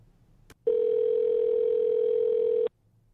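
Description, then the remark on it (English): A sharp click, then a steady, loud telephone tone holds for about two seconds before cutting off abruptly as a phone call is placed. No one speaks. “Let's give a call to Grandpa.”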